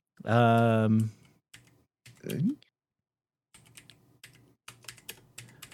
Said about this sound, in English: I'm typing, guys. Sorry. Click, click, click. We love it. We're here for it.